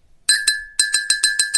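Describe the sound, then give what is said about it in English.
A small bell dinged rapidly about seven or eight times in quick succession, each strike bright and ringing with a sustained metallic tone, loud, with no voices. “There's the bullshit bell.”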